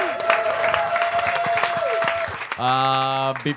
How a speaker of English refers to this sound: Give these guys another round of applause.